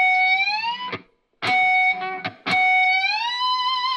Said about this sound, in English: When you slide that harmonic up, it sounds like you're starting with like a natural harmonic